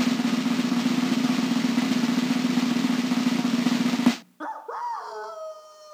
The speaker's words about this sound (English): The puppy dog. Is that Obi, your dog? Does that sound like your dog? Yeah, you had Yoda and then you had Obi. Exactly. Sounded like it was in pain.